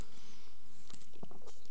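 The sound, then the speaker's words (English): A few soft sips and small mouth sounds from someone drinking water, brief and quiet, with no talking around them. “And I actually am going to have to take a sip of water here.”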